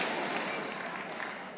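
audience hand claps

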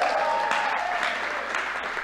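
audience applause

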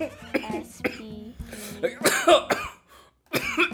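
coughing

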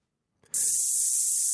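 snake hiss sound effect

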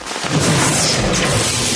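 lightning strike thunder crack

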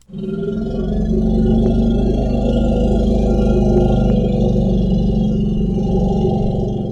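elephant low-frequency rumble

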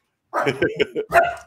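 excited dog barking

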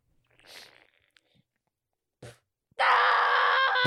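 person screaming

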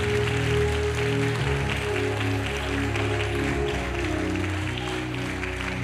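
audience clapping hands

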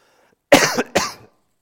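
cough

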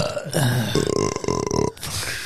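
burp into the microphone

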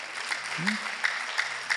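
applause

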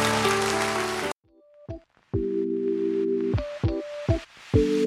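audience hand clapping

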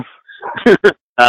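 dog barking excitedly

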